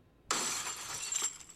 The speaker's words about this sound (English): And I downloaded a Halloween sounds app. Because, as you do, are you going to play another one? Yeah, glass shatter.